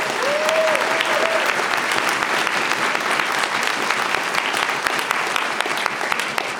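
An audience applauds steadily for several seconds, a dense, even wash of many hands clapping at a constant loudness, with a brief faint whistle near the start.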